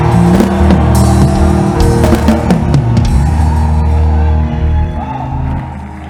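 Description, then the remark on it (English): A crowd of many voices screams and shouts together in a loud, sustained roar that stays strong for about five seconds before easing slightly, dense with overlapping cries, as the audience is called on to scream after a prayer. “In the name of the Lord Jesus Christ, come and scream like your voice is yours.”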